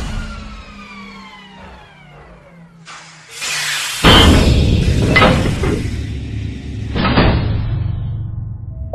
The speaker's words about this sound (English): I think we figured that out when we heard the loud hissy thump sound.